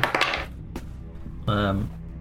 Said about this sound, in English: I rolled a nat 1 there.